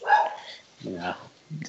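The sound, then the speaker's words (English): A dog barks three times in short, separated bursts, the first higher and yappier, the later ones deeper, moderately loud with no other sounds around them. “So, we got some dog there going on.”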